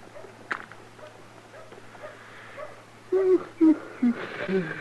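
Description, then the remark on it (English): A dog gives three or four short, soft whimpering whines in quick succession near the end, over a low, steady background hum, with faint scattered rustling earlier. “Your dog sure ain't very lively today, is it?”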